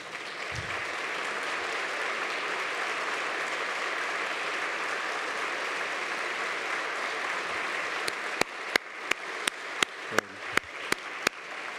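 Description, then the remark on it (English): A crowd applauds this year's graduates as they stand, clapping steadily for several seconds in a dense, even wash, then it thins out to a handful of scattered, sharp individual claps near the end. “If you're a graduate this year, why don't you stand so we can clap for you?”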